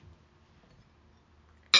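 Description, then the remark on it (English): A single bright, sharp clink of wine glasses of 2018 Chenin Blanc from Herringer Estates, Clarksburg, California, touching in a toast, ringing briefly right at the end after a near-silent stretch of low hum. “Cheers. Cheers.”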